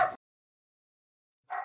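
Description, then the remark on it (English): A dog barks excitedly, two sharp barks separated by more than a second of silence, with no one talking. “If my excited barking dog is any indication, I think it's time to wrap up this episode.”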